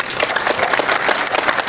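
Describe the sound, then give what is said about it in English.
An audience applauds a panel of Bill Wagner, Udi Dahan, Nick Molnar and Jimmy Bogard, a steady, dense wash of many hands clapping at an even, fairly loud level with no voices on top. “And a big round of applause for Bill Wagner, Udi Dahan, Nick Molnar, and Jimmy Bogard.”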